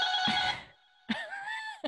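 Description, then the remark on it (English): A doorbell at an apartment door in a residential building rings twice: a bright, harmonic electronic chime sounds, fades, then repeats with a sharp onset and a warbling tone, ending with a short click. No one speaks. “Someone's at my door. I don't know why. So I'm going to pause this.”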